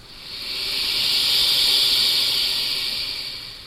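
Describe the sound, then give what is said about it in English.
A loud, steady hiss, broad and airy like escaping steam, swells gradually to a peak and then eases off over a few seconds, with no voices present; heard at about 3 a.m. aboard a sailboat on a canal, with a slight drizzly rain falling outside. “He could hear the sound of a slight drizzly rain outside, and then suddenly heard what he thought was a loud hiss.”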